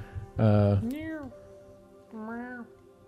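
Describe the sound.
A person imitates a cat with a loud, nasal meow, followed by a rising-and-falling mewing call and, after a short pause, a second shorter meow.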